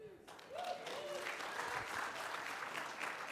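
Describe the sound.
An audience breaks into steady, dense applause that holds at a fairly constant loudness for a few seconds, with a faint voice briefly audible at the start.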